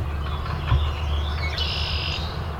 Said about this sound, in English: All right, so on the edge of the lake here, I'm gonna try see if this thing can differentiate swamp sparrow that's here from chipping sparrow. Let's see how it goes. You hit record now. Okay, it's got red-winged blackbird already.